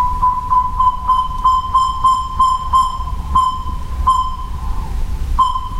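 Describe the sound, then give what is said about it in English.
A northern saw-whet owl gives a long, steady series of high, whistled toots, about two or three per second, over a low background rumble, at night in October in the woods of Yellowwood State Forest, Brown County, with no one speaking. “I'm with a dedicated group of people who are documenting northern saw-whet owls in Yellowwood State Forest.”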